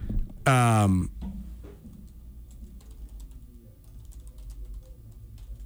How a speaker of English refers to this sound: But here, I was just typing on my computer because I'm trying to grab the results here because Eric Tabor from Montana Sports Information just set these out.